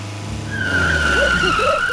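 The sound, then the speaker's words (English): A car driven by Reggie rumbles as its tires let out a long, high screech, sliding to a stop over a low engine drone. No one speaks. “Are you sure this car is safe?”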